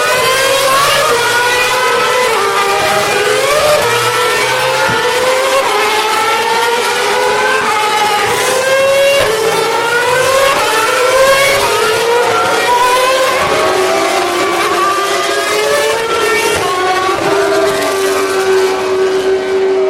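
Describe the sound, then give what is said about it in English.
Several racing car engines, not at full throttle, roar at once, their pitches climbing and falling as they pass, loud and harshly distorted throughout with no let-up, the recorder overloading even with its record level turned down to 8. “Actually hurt my ears, and it was in overload and those cars weren't flat out.”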